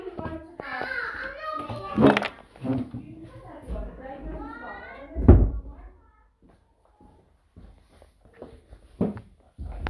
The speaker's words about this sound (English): Hold on 1 second, he's closing the door here.